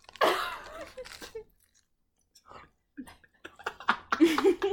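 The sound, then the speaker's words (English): Crisp crunching of someone biting into and chewing lettuce, loud bursts at the start, a quieter pause with faint munching, then a renewed flurry of crunchy chewing. “I'm chewing it. You're eating it. How's the lettuce?”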